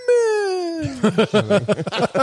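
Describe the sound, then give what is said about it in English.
A person imitates the elephant alarm call that means "human" with a loud, sustained, tonal wail that slides downward in pitch for nearly a second, followed by quick, choppy talking. “That was your elephant, or that was your whale noise for humans?”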